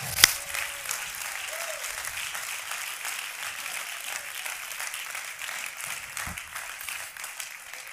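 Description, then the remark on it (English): A church audience breaks into sustained applause as a hand clap of praise to the Lord, a dense, even wash of many hands clapping for several seconds, opening with one sharp louder clap and holding steady without speech. “Oh, somebody give the Lord a hand clap of praise.”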